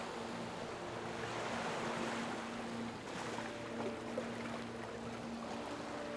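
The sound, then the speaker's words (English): Ocean waves wash steadily onto the shore in a continuous, even roar, with a faint low hum underneath and no voices. “and as you reach the water's edge, allow the waves to wash over your feet.”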